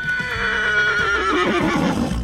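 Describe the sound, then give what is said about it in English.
A working horse at a coal mine neighs loudly, a single drawn-out whinny lasting about two seconds whose shaky, quavering pitch wavers and drops toward the end, with no talking. “In those days, there was a team of horses working at each mine.”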